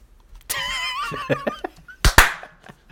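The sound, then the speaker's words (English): A couple of sharp hand claps, made to sync a recording, land close together near the end, after an earlier single clap and a stretch of giggly, wavering vocal sounds. “I didn't have the time or mental bandwidth to put a funny name on this one, so let's just clap at 110.”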